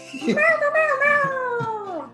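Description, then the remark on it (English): A person imitates a cat with one long, drawn-out meow that slowly falls in pitch over about two seconds, fairly loud, with no other talking. “Yes, it's like the cat translating into cat for all of the cats at the party.”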